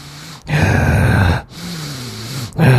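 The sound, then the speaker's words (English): Heavy breathing right into a microphone, several loud inhales and exhales in a slow rhythm with brief pauses between them, no talking. “You can hear all my breathing.”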